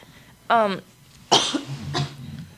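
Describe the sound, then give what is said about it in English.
A person coughs, starting with a throaty, voiced hack and followed by a sharper, harsher cough and a smaller trailing one, fairly loud against a quiet background. “Excuse me, I had a cough.”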